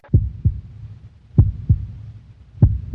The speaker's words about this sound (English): I can barely hear the heartbeats.